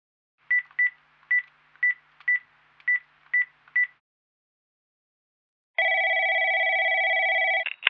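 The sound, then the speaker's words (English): Eight quick touch-tone keypad beeps dial a number at a steady pace, then a pause before a loud, sustained multi-tone phone signal sounds and cuts off with a click. “But before that, we have a phone call to make.”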